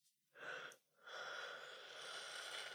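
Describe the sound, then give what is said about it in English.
A breathy yawn: a short gasping intake, a brief pause, then a long airy exhale lasting nearly two seconds, with no talking. “When I clear energy, I yawn, but I keep yawning.”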